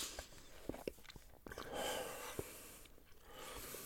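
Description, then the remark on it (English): Quiet crunching of someone biting and chewing an apple while letting go of their pinched nostrils, with a few sharp crisp bites amid soft snuffly breathing through the nose and no talking. “As you're crunching, let go of your nostrils.”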